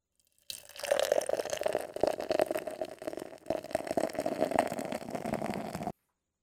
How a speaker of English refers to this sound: All right, man, let's get this beer poured out. Let's enjoy this premium lager and see what this is all about, man.